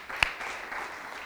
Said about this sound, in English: Hey, 35 kids last week. That's really awesome. Thank you, church, for responding so well. I think we can give that a round of applause really quick.